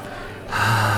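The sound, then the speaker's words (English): A single sharp sniff into the microphone, loud, a breathy rush of air through the nose that surges halfway through and holds briefly. No one speaks. “I'm not going to sniff into the microphone, although I just did today.”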